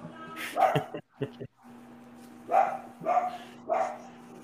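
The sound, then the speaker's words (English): Dogs bark in a handful of sharp, irregular bursts, a brief pause then three more barks in quick succession, over a steady low electrical hum. “Well, it sounds like the dogs want us to move on, so.”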